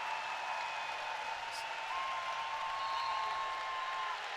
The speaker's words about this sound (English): I mean, you hear a crowd get loud. That's got to be intimidating.